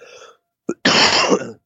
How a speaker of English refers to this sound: Excuse me. I can't stop coughing on you guys. I'm sorry. By the time I reach out for the mute button, it's too late.